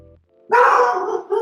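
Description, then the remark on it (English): A dog lets out a loud, sustained bark or yelping howl lasting nearly a second, followed by a brief second yelp, with no talking. “There's a dog barking.”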